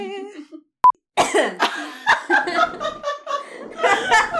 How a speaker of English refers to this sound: Take a breath, look at me with wide eyes and a finger up as though you're about to dive back in and then cough.